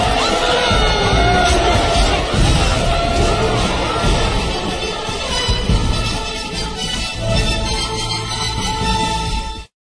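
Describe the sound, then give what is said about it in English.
A large crowd cheers wildly and continuously, with loud roaring, whoops and shouts blending into a dense, unbroken wall of noise that holds steady for nearly ten seconds before cutting off. “The crowds are going nuts!”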